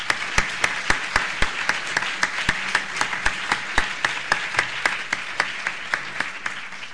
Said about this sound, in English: and I think they deserve an applause.